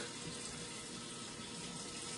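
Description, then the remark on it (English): Hot water runs steadily from a tap, used for thawing, a continuous hiss and splash with no pauses and no voices over it. “So here we go, hot water there.”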